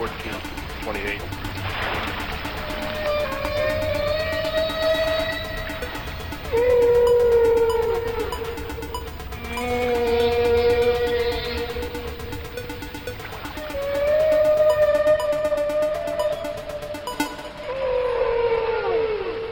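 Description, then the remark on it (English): Song of whales 40 to 50 feet long: long, eerie moaning calls that swell and bend in pitch, several in slow succession, fairly loud against a steady hiss of underwater background. “In fact, they make some of the most extraordinary sounds known in the animal kingdom, though no one yet knows why they sing or even how.”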